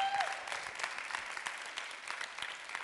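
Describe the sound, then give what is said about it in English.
An audience applauds steadily, a dense patter of many hands clapping at once, fairly loud and sustained without any voices standing out. “I was talking with, yeah, you can give a big clap for that one.”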